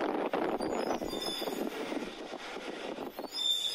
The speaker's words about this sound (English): Anyways, take a listen to this. This is real. This is me following a whale slash garbage truck through my neighborhood, going down the hills, and it starts doing whale songs to me.